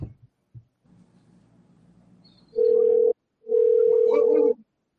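A telephone line tone sounds while a call back is being placed: a low murmur of line noise, then two long, steady, fairly loud electronic tones with a short gap between them.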